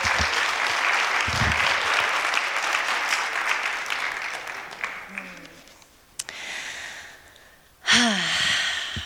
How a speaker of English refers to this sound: One more round of applause for these brave teens sharing their truth.